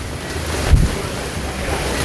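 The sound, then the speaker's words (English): Strong wind roars steadily outdoors in Florida, buffeting the microphone with a loud low rumble and a brief heavier gust about a third of the way through; no one speaks. “It's very windy.”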